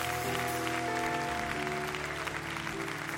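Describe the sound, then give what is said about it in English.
Loud, sustained applause from a large crowd, given for Jesus, fills the space. Steady clapping and cheering play over a held musical chord in the background. “Now, can you give Jesus the best round of applause you've got?”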